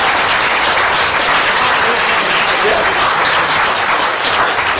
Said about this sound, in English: Okay, all right, big round of applause for Buffy versus River.